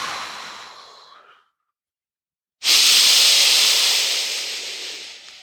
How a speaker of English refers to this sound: So go ahead and start your last round of 12-fold lower belly breathing, pulling your belly in.